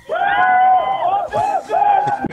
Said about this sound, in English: let's get another big cheer from the background. Come on.